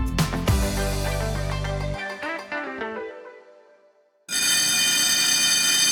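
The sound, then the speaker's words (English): A loud bell signalling that time has run out rings in clanging, shimmering tones that fade over a few seconds, then an abrupt, harsh sustained ringing blares to the end, with no voices. “That's just the bell to let us know that we've run out of time.”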